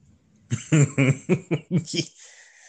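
A quick run of about six coughs in close succession, fairly loud, with no talking over them, trailing off into quiet.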